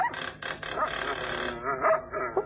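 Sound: several dogs barking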